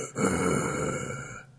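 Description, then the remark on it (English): A person imitates the grunting of a silent video game protagonist: one drawn-out, low, throaty vocal sound lasting over a second, fairly loud and steady before cutting off abruptly, with no speech around it. “He had, like, grunts, kind of, and, like, silent heavy, protagonist. Heavy breathing, like...”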